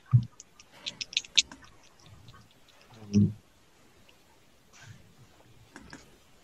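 A small eight-sided die (d8) is rolled for damage in a tabletop game, rattling and clicking across a hard surface in a quick burst of sharp taps, followed by a duller knock, then quiet background noise with faint clicks.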